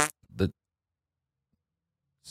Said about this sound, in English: Sorry, I have the fart extension on Zoom conference. Sorry, let me just disable.